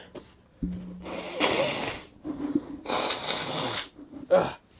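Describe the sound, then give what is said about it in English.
Someone blows their stuffy nose, several loud, breathy honking bursts with short pauses between, ending in a brief final snort. “I gotta blow my nose or something.”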